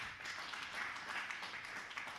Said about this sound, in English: And if you know Jesus, would you give him a hand clap of praise right now?